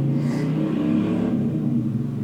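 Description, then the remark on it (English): A motorcycle engine drones past in a steady low rumble, its revving tone holding loud and even for a couple of seconds with no voices over it. “Thank you, motorcycle going past.”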